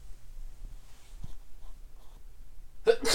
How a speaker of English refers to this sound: Sorry, guys, I had a sneeze there.